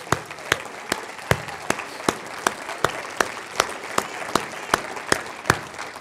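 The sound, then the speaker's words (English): An audience gives God a hand clap of praise, clapping together in a steady, even rhythm of sharp claps, about two or three per second, over a continuous wash of scattered hand clapping. No one speaks. “Let's pause right now and give God a hand clap of praise.”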